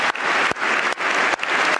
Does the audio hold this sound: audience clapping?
yes